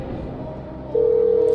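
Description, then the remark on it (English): After a moment of low background hum, the steady electronic ringing tone of an outgoing phone call starts and holds evenly through the end, clear, as if from a handset speaker; a phone-a-friend call placed during the game show Guess That Sound. “If she doesn't answer, you'll have to text her and say, answer this phone.”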